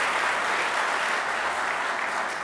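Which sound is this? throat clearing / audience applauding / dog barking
audience applauding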